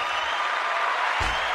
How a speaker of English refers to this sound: We got to clap again.